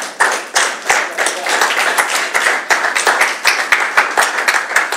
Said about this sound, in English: Can I just take one moment and say Happy Father's Day? Can we clap for our fathers in the room?